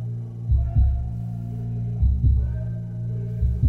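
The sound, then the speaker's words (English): A heartbeat thumping in a steady lub-dub rhythm, three double beats over a continuous low, muffled hum, with no voices. “The first music I ever heard was my mother's heartbeat.”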